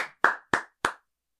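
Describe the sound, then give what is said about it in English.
Slow, sharp hand claps from a single man who stood up at the end of a movie, with no one joining in: about four evenly spaced smacks roughly a third of a second apart, loud and alone with no voices, then silence. “Wait, I want to hear what those 5 claps sound like.”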